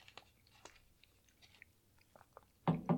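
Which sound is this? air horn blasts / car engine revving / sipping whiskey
sipping whiskey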